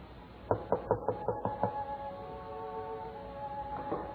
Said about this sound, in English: Who knocks at this hour?